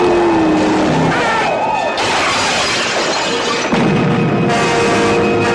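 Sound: car engine approaching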